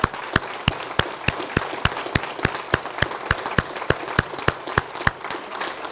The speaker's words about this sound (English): You know what I think these people need? A big round of applause for everything they've done.